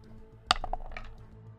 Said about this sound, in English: I bounced off my other dice. 10. 10? Okay. It was almost a 19. And then it rolled off my other dice.